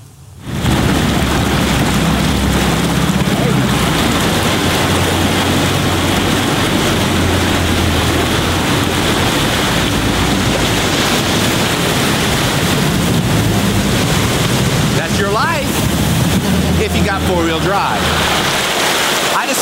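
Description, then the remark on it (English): A four-wheel-drive Toyota ploughs through water: a loud, continuous rush of churning splash and spray for nearly twenty seconds, with an engine rising briefly near the end. “You know what happens if you do have four-wheel drive? Oh, man, watch this. Watch this Toyota. Turn the volume up.”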